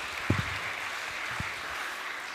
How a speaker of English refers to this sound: Let's give these girls a massive cheer. Well done, girls, for sharing to us. Thank you. Thank you.